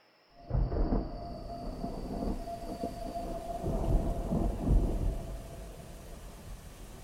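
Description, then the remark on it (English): Heavy rain pours steadily on a rainy night in New Orleans while deep thunder rumbles and rolls through, swelling louder in waves over several seconds before easing slightly. No voices, just the storm. “Under the cover of a rainy night, Père Dagobert visited each of the deceased men's families”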